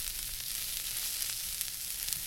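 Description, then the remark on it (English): Steady sizzling of bell peppers and carrots sautéing in a pan on low heat in a kitchen, a continuous crackly hiss with small pops and faint stirring, no voices. “So you're sauteing up these bell peppers and the carrots, right?”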